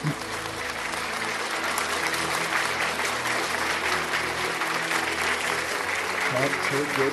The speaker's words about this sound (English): let me clap for you.